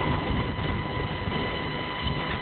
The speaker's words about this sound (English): It sounds like you got a hairdryer in the background. You got something going on in the background there,